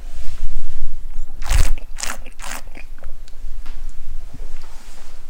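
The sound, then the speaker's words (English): A sip of white Rhône wine followed by air drawn through it during a tasting: three quick, hissy slurping bursts in succession, then quiet with no one speaking. “And then what we do is, of course, take a sip and draw a bit of air through, so...”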